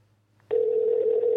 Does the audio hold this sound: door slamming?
no